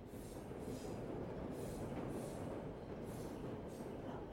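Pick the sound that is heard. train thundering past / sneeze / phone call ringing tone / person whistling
train thundering past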